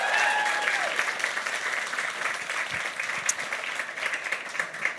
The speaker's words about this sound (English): So please, a big round of applause for Emer McGlysett and Sarah Breen.